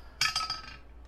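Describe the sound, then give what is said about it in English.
Dice clatter onto a hard table in a quick burst of bright clicks, a few rapid taps tumbling and fading within a second, with no voices over them. “Give me your best roll.”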